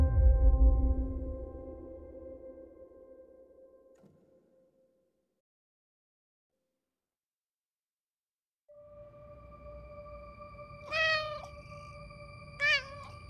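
A sustained tonal chord fades into silence, then a pet cat meows twice, a bright rising-and-falling cry followed shortly by a shorter second one, over a low background hum.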